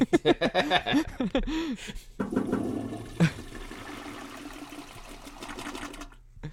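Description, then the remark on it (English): A toilet flushes, a sustained rushing gurgle of water lasting several seconds after a brief squeaky, whirring sound at the start, then cutting off abruptly. “Do a double flush, you know, be polite.”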